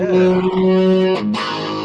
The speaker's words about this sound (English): Yes. I mean, guitar's gone out of tune a bit, but I mean, you can...